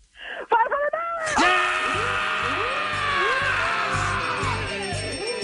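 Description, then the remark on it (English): A woman lets out a long, loud, high-pitched scream of excitement on learning she has won $500 in MMR's Rock Refund, her voice rising and wavering in sustained shrieks that fill the whole stretch. “That is the scream of a happy woman right there.”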